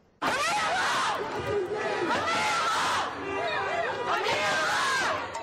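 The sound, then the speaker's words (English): A large crowd of student protesters marching to the governor's residence in St. Paul, Minnesota, to demand a ban on no-knock warrants chants loudly in unison, voices rising and falling in repeated rhythmic phrases with a steady, energetic roar of many people throughout. “Some St. Paul students marched to the governor's residence to demand a ban on no-knock warrants.”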